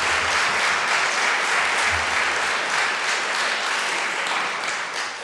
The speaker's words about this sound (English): Clap.